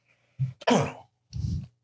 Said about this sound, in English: I love that I have to keep muting myself because I have these coughs. So it just sounds like there's big drops in my... Thanks, COVID. Thanks, COVID.